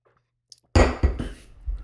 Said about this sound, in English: Alright, so, moving on, let me take another sip right here.